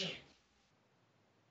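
A single quick, fairly sharp sneeze bursts out at the very start, then fades into a near-silent pause before another sound begins at the end.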